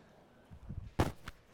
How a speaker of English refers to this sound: I'm used to having lapel, so I always try to cover up from coughing. And I'm like, oh, what do I do with this thing?